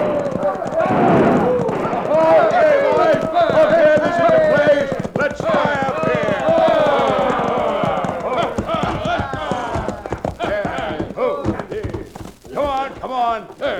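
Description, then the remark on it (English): Many horses gallop in as a crowd of hoodlums rides into the town of Dos Rios, hooves pounding in a fast, irregular clatter that runs throughout, while the men shout and whoop loudly over the hoofbeats and fire their guns. “It all started when a crowd of hoodlums rode into Dos Rios, airing their lungs and triggering their guns.”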